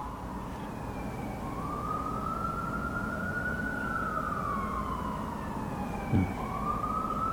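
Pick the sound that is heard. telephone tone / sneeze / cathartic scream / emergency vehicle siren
emergency vehicle siren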